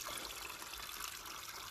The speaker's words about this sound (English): So, today we've come to a place called Gorton's Well. A very spiritual place, very calming. And in the background, you can hear the water running down the banks.